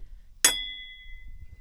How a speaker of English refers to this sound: We gotta clink something.